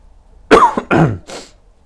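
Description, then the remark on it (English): Three loud coughs in quick succession from a person who is a little ill, the first harsh and throaty, the last one softer and breathier, with no talking around them. “And sorry about the coughing, by the way.”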